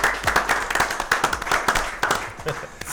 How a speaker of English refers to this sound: So look, one, two, three. Shooting with Shooters. There you go, there you go, Clap for yourself.